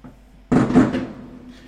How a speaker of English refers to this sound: By the way, it's 4th of July, and the fireworks are going...